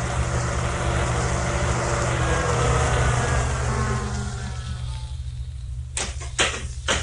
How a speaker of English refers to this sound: It ain't the cops. Because there's only one of them. You think a cop would come driving up here in broad daylight like that?